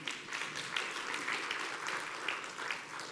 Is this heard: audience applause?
yes